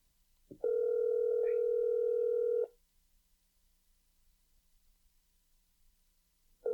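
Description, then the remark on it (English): A telephone ringback tone plays while waiting for a store associate to answer, after the associate option was chosen in a phone menu: one steady electronic ring of about two seconds, then silence, and a second ring begins at the very end. Clear, with no voices. “Or do you think every phone's ringing and it's just whichever associate I get first?”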